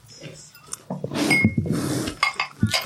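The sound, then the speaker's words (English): A drink is poured with a steady splashing hiss, accompanied by a few sharp clinks and knocks of glasses and dishes, some bright and ringing, others dull, at moderate loudness. “You need some ice, or you want to drink it straight?”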